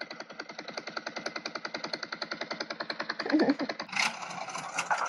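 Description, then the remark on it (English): An old car engine sputters and chugs in rapid, even pulses as it struggles to start, then breaks into a rougher, louder rumble near the end. It is fairly loud, with no voices. “That's a car engine sputtering.”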